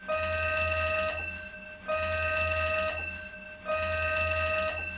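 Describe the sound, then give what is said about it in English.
An electronic alarm rings out in an arboretum in three long, steady bursts separated by short gaps, a bright buzzing tone with a low hum beneath, loud with no voices. “She slugs him, and as he falls to the ground, an alarm rings out, and the arboretum is bathed in red light.”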